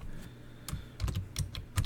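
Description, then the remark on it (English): Clicky keystrokes on a computer keyboard as someone types in a search for Can-Am Maverick X3 parts, a quick irregular burst of taps with short pauses between clusters and no voices. “And yes, guys, I'm sorry, you can hear my keyboard.”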